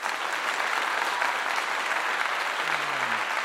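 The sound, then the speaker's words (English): Steady, dense applause from a crowd fills the whole stretch at an even loudness, a continuous wash of many hands clapping with no voices standing out. “Give yourself a round of applause for being here and listening to your boy.”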